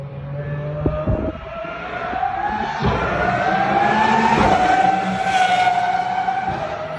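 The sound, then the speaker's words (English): A high-pitched V12 race car engine with two silencers on the exhaust screams steadily in a pit lane, its muffled exhaust note rising in pitch as it accelerates, loud, with no talking over it. “that noise you heard, it had two silencers on the exhaust”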